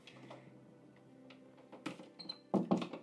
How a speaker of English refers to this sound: There's two dogs in here, so there's some associated noises. Perhaps I'll close this door off to one of the dogs.